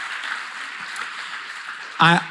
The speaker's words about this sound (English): So I wonder if no matter where you are, if you would just welcome them by way of a round of applause, and then I'll tell you why afterwards.